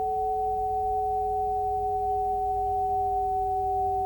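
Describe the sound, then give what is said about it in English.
Two steady pure sine tones hold unbroken for the whole stretch, one pitched a little above the other, humming evenly over a faint low rumble with no voices. “I suggest we settle back and listen to the tones and the sine waves and the sound and the manipulation, the subliminal, the liminal.”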